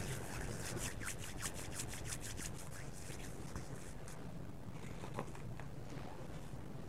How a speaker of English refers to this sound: I'm now going to wash my hands and get my gloves on. I'm going to wash my hands with an alcohol-based hand sanitizer, or you can wash with soap and water.